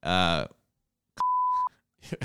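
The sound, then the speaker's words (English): A loud, steady single-tone censor bleep lasting about half a second covers a swear word, the 'C word', between bursts of speech, with a voice talking before and after it. “I was going to say rooster, but I decided to let you beep out the C word.”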